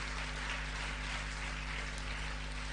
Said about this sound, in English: I thought you'd clap your hands for Jesus.